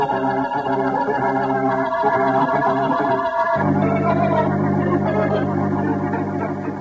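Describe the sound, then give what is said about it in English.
A burglar alarm rings loudly and without pause, a dense, harsh metallic clamor full of overtones whose tone shifts partway through before carrying on steadily. No voices are heard. “Set off the burglar alarm.”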